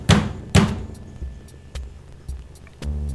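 Two loud, heavy knocks on a door land about half a second apart, followed by a few fainter scattered taps and then a low sustained tone at the very end.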